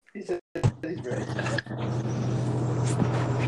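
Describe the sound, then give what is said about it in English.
A truck engine drones steadily with a deep, constant low rumble and road noise, heard through a narrow, phone-like line from a caller driving a truck in Nashville, with brief muffled voices and clatter at the start. “Don't tell me you're driving truck again. I am driving truck.”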